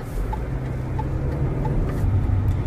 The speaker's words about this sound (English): Isn't this fun being with us in the car?